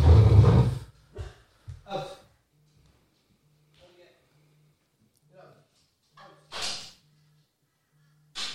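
Dogs make scattered noises: a loud burst at the start, then a few short snorts and huffs with quiet gaps, and a sharp sneeze-like hiss near the end over a faint steady hum.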